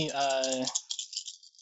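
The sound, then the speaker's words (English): A short voiced sound gives way to dice being rolled for a perception check in a tabletop game, rattling and clattering, a light, bright jumble of small hard clicks that tapers off over about a second. “Oh, I somehow rolled a straight, I think.”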